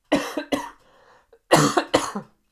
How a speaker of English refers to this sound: God damn it, I almost didn't cough. At the last minute, I fucked it up.